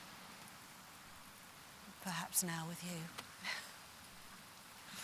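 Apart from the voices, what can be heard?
rain falling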